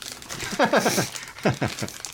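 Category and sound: household object, plastic bag crinkling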